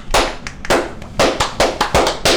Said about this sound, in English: It's a slow clap. Hey, slowly accelerating. Damn. Goes for Dan Simmons.